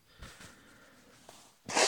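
Someone blows their nose: a couple of short snuffling puffs, a drawn-out nasal honk, then a loud, forceful burst of air at the end. No one speaks.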